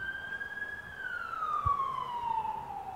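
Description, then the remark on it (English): An emergency vehicle siren sounds outside, holding a high tone and then sliding steadily lower as it passes, over a low background rumble with one brief thump. “And if that person died with that siren, they died and they went to hell”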